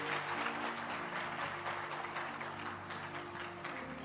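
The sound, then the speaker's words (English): An audience at a Saturday night church service claps steadily for about four seconds for the pastor and his wife, a dense, even wash of many hands with no single claps standing out and no voices on top. “Let's clap our hands for our pastor and his wife.”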